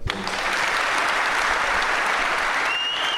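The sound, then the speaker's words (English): A live audience breaks into sustained applause throughout a chat with Shane Duffy, a dense, steady wash of clapping that stays loud and even for the whole stretch, with no voices standing out above it. “Yeah, lovely reaction from the crowd there throughout that chat with Shane Duffy.”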